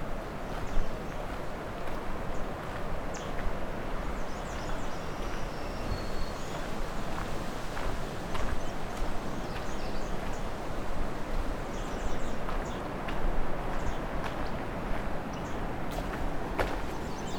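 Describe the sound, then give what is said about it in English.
Sparse, sharp ticking calls from a black-throated blue warbler come at irregular intervals, fairly faint against a steady rushing outdoor background with no voices. “Those ticking sounds are probably the black-throated blue warbler calling.”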